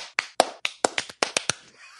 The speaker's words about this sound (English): Everybody, let's give Lee a slow clap for her timing. Slow clap, man.